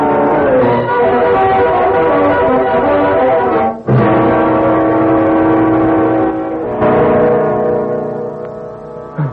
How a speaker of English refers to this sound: That's your doorbell, Johnston. Oh, yes. The doorbell.